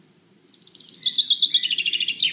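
A small bird sings a fast, high-pitched trill of rapid repeated chirps, building in loudness over about two seconds and ending with a brief rising flourish, heard alone over a faint low rumble.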